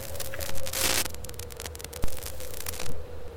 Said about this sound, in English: What's going on? I'm getting some interference. Can you hear me?